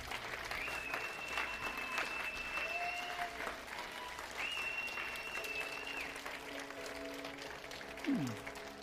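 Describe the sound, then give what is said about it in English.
A large crowd applauds steadily for several seconds, a dense wash of clapping, with faint whistles and cheers rising over it. “Can we just give them a round of applause one more time?”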